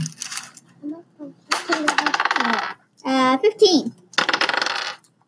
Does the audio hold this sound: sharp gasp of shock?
no